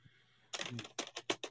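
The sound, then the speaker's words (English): A quick flurry of sharp key clicks on a small sound effect keyboard, then four distinct clacks in an uneven rhythm, fairly loud, with no talking over them. “And so corporate, I've got my little sound effect keyboard here.”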